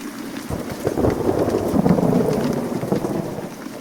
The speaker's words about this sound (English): Oh no, it's raining.